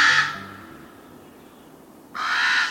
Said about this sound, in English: The common raven is our largest songbird, and it has a voice to match its size.